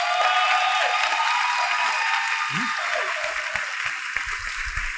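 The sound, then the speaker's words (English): An audience claps steadily for about five seconds, a dense, loud wash of many hands with no clear pauses, and a faint voice briefly rises underneath. “Clap for me if you like what I'm saying to you.”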